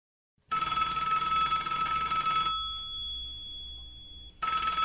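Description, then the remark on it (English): A telephone rings on the line as a call is placed to the police station: a steady electronic ring lasting about two seconds, a pause with a faint lingering tone, then the ring starting again. No one speaks. “Operator, please get me the police station and ask for Chief Carter Shepherd.”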